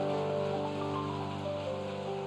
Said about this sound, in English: Let's give a lot of clap, shall we? 把最大的掌声荣 耀归给神。